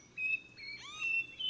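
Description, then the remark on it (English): A Nightingale Wren whistling its song: a few clear, pure notes held at slightly different pitches, with a quick sliding note in between, set against a faint, steady forest background. “It's one of the most out-of-tune bird songs I've ever heard.”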